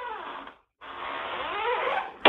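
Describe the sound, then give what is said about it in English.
A squeaky door creaks open with a drawn-out, wavering squeal, pauses briefly, then groans again in a longer creak before shutting with a sharp clack. “Squeaky door and a puppy that keeps asking to go in.”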